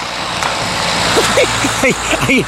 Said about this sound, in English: There's another car coming. All these cars. I tried to think how much it's costing to get all these cars on the road.